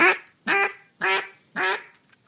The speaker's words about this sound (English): Well, they quack differently. And, you know, there's raspy old sounding mallards. You know, there's younger high pitched sounding mallards.